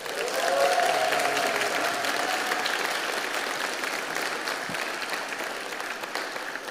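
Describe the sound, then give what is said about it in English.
A church audience at a baptism service breaks into sustained applause and cheering for the newly baptized, a dense wash of clapping that stays loud and steady throughout, with a few voices whooping early on before it gradually eases. “Should we give them another cheer?”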